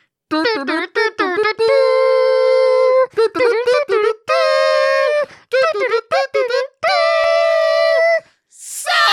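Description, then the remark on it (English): A voice imitates a kazoo as an introduction, buzzing a tune with short choppy notes broken up by long held buzzy tones, loud and nasal with rich harmonics, ending in a brief breathy burst. “Who I can't properly introduce without my kazoo, but I'll try.”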